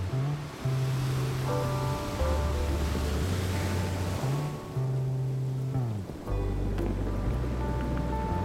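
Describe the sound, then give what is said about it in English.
Steady ocean waves wash and hiss continuously in a bay in Hong Kong at night, with a large ship sitting in the water, beneath a loud orchestral score with sustained low notes, the surf blending into a constant broad rush. “A large ship sits in the bay as the waves slowly sway back and forth.”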